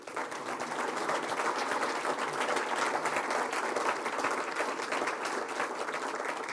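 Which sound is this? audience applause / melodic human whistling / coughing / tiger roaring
audience applause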